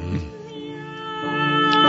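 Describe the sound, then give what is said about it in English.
Cat meows strung together into a short sung melody, with sustained tuneful yowls that swell steadily louder over a couple of seconds, no one speaking. “we understand this is kind of a classical piece that the cats have put together”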